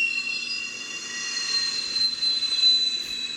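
The steam whistle of a camote (sweet potato) vendor's cart, pushed around by the vendor, gives a steady, shrill, high-pitched screech that holds for several seconds without a break, fairly loud, with no voices.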